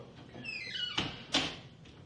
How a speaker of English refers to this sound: Close the door. I don't want your dad coming in.